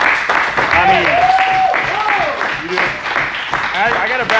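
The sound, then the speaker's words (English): A crowd applauds a person being called up to speak, clapping steadily for several seconds in a dense, even wash with whoops and shouting voices rising over it. “Give him a hand clap.”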